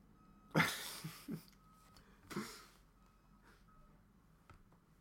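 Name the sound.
truck reversing beeps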